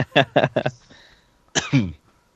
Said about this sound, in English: Excuse me for coughing. Okay. Trying to hold it in.